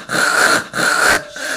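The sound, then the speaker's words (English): A person's voice imitates a dog retching: two long, harsh, strained heaves with a raspy, squealing edge, followed by a shorter, quieter gasp. “He has his head in the corner by our bookcase, and he's trying to throw up.”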